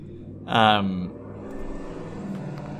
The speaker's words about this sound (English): Jesus Christ, these cars.